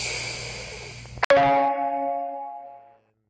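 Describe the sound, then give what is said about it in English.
A single bright notification chime sounds after a soft click, its bell-like tones ringing out clearly and fading away over a second or two, with low background hiss beforehand. “I changed it from the knocking to the bell for friends that are in cannabis that have dogs at home.”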